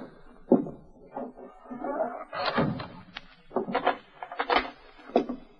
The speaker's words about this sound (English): Go on. Rap three times. That's a signal.